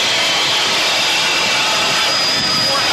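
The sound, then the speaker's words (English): A racing powerboat engine roars at full throttle during a race at about 90 miles an hour, a loud, steady, hissing blast of noise that holds constant throughout, overwhelming, with no voices audible. “We're going right now 90 miles an hour. These guys are amazing. They are walking away with the race. Look at this boat handle.”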